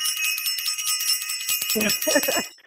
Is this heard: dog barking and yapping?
no